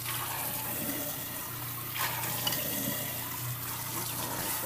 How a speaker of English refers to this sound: Without getting water all over myself. Am I like the only person who gets water all over themselves anytime I try to use the spray thing on a bowl?